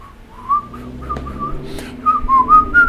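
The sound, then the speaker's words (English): A person whistles a wavering, sliding tune, with a few short phrases that rise and dip in pitch and grow a bit louder toward the end. No talking. “So I can whistle.”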